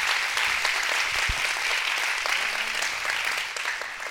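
A large crowd at a church sermon applauds continuously, clapping their hands in worship as the preacher asks; a dense, steady wash of many hands clapping at once, fairly loud and sustained throughout with no speech over it.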